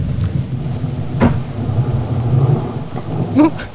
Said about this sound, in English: That sounded like a giant burp. It's actually a male harbor seal. They make kind of this growling sound.